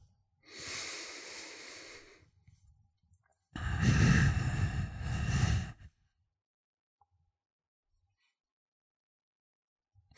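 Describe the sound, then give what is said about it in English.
A slow, audible breath through the nose, made louder than normal as a breathing demonstration: a softer airy inhale, then a longer, louder, fuller exhale, with quiet pauses around it and no talking. “Taking some nice nasal breaths the whole time. I'm breathing a little louder than I normally would be”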